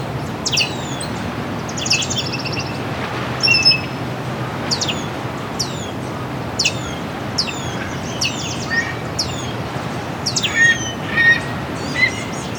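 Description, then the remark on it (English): A Baltimore oriole sings clear, whistled phrases in short bursts throughout, over a steady outdoor rumble, with other birds chirping faintly. “Baltimore Oriole here somewhere. There it is again.”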